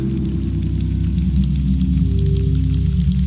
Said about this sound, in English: That night I woke to a very strange sound coming from outside, which sounded like trickling water on canvas.